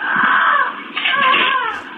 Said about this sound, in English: When is Brock going to play that parrot again? Oh, I'll play it right now for you. You missed it more on Madness. This is a parrot. This sounds like a screaming woman.